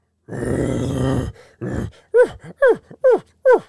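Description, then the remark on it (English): A bull elk calls: a long, deep, raspy groan and a shorter one, then four loud, evenly spaced squealing yelps that slide downward in pitch. No one speaks. “that's not a bear. That's an elk.”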